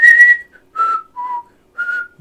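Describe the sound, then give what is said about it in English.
Someone whistles four short, clear notes with pauses between them, the tones stepping down and then rising again, fairly loud with no talking. “It's in the middle of your mouth when you whistle.”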